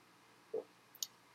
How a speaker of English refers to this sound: That was such a big gulp. Gulp.